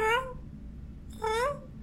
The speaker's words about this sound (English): that is the foster cat, Miss Ty.